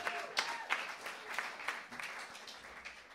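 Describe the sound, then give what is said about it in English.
A small audience applauds a PhD in psychology for a few seconds, a steady patter of hand claps with some sharper individual claps standing out, moderately quiet and with no talking over it. “Yeah, round of applause for a PhD in psychology.”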